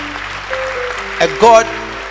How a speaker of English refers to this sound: Oh, if you are clapping, clap well.